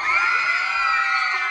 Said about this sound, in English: and then we get screams because who is showing up but Johnny Fontaine? What is that outside?